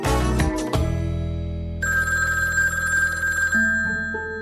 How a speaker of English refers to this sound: And so, a week before Thanksgiving in 2008, the phone rings in the kitchen, and it was the husband